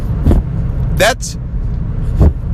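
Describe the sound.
A steady, heavy low rumble of a Chevy Silverado pickup truck driving on the road in the left lane at about 72 to 76 miles per hour, continuous, broken by a few short bursts of noise and faint voice sounds.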